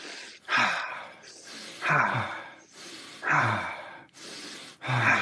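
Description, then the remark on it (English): Deep, steady breaths cycle in a slow rhythm during a breathing exercise, airy inhales through the nose alternating with fuller, rushing exhales through the mouth, about four or five rounds, clear with no talking. “We're going to be breathing in through our nose, out through our mouth.”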